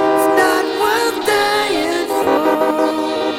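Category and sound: sound effect, train horn sound effect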